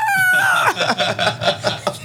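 A pterodactyl screech sound effect: a shrill, tonal shriek that bends downward in pitch, followed by a rapid series of harsh, rasping squawks pulsing about every quarter second.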